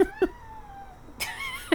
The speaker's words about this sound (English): Did your cat just bark? That was Gouda, yeah.